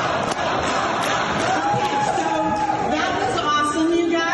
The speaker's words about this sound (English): One more thing that kind of went under the radar. And it's really because it happened during a commercial break. Listen to what the crowd started chanting. And then the crowd gets scolded by an NBC producer.